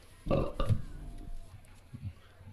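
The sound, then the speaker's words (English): A loud belch, made while drinking and rating beers, erupts with a rough, gurgling burst, then trails off into lower, rumbling croaks before quieter throaty sounds follow. “We'll be discussing and rating these beers with these Suds ratings, plus our signature belching sounds.”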